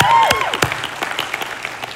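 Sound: audience applauding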